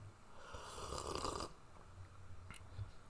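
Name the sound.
sipping coffee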